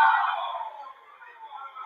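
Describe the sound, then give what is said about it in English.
Fans at a Memphis Wrestling tag team match chant a wrestler's name in unison, a dense wash of crowd voices that starts loud, dips through the middle, then swells again toward the end. “Fans still chanting, Danny, Danny.”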